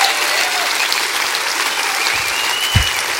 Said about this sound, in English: Come on. Come on, clap your hands.